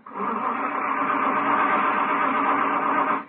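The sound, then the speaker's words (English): An old car engine, after the car was left outside overnight in the cold, labors to start, giving a rough, steady, mid-pitched churning rumble that holds for about three seconds before cutting off, with no voices. “Hey, there she goes. Don't let it die.”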